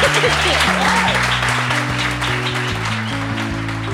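A steady, dense round of applause from an audience for a guest at the end of an interview about building startups keeps going for the whole stretch, laid over a music bed of low sustained notes that shift in pitch.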